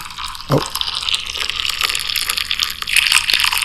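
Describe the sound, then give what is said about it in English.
A continuous stream of liquid pours and splashes, a steady hissing trickle with small crackly bursts throughout and no voices. “That does not sound like coffee pouring. Definitely sounds like you're at a urinal.”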